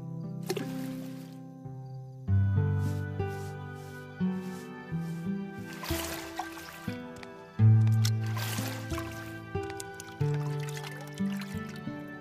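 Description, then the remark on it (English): Gentle water splashing and trickling in a few soft bursts as Jesus washes everyone's feet around a table with a large bowl of water, heard under steady, sustained background music. “And so Jesus himself, their Lord and teacher, went around the table with a large bowl of water. He washed everyone's feet until they were all clean.”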